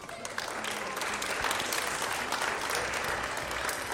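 audience round of applause

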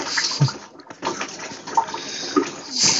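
water splashing

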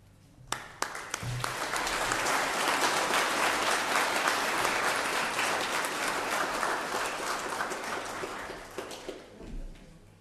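audience applause

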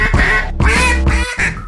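duck call being blown

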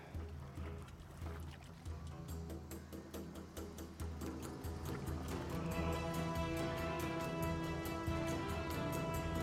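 boat on the water

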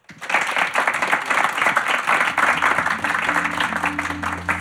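audience round of applause

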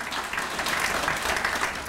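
audience applause

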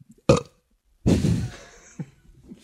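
belch

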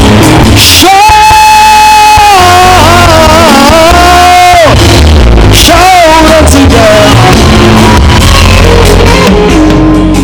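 audience clapping and shouting

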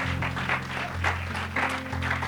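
audience applauding

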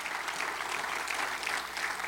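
church audience clapping hands

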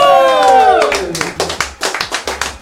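applause

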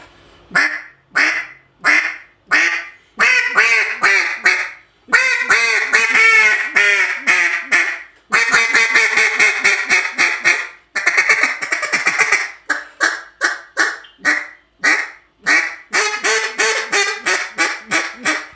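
duck call being blown

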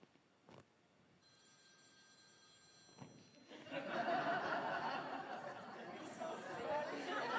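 telephone ringing

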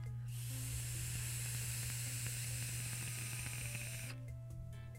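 vape coil crackling

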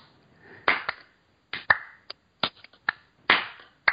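slow clap

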